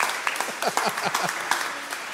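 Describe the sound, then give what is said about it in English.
A church audience claps together, a dense, reverberant patter of many hands with sharp overlapping cracks, steady and moderately loud throughout. “If we're going to clap, church, let's commit.”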